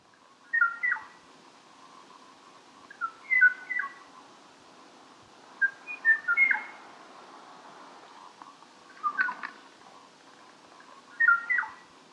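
A lone o'o bird, probably the last one of its kind, sings short, clear whistled phrases of a song meant as a duet about every two to three seconds, each followed by a pause waiting for a reply, with steady faint background noise and no answering call.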